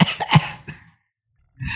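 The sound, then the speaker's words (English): A harsh burst of several rapid coughs from someone who is sick, then a short silence before another rough cough begins. No speech accompanies them. “I mean, all coughs make everyone sound a little bit more manly because, you know, if they're real, I guess.”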